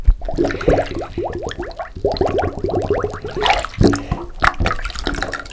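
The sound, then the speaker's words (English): Bubbles gurgle up through bath water from a submerged plastic cup, a rapid run of glugging, rising pops that comes in bursts and pauses, fairly loud, with no talking. “Yes, you're right that it was bubbles, actually made using a plastic cup in a bath.”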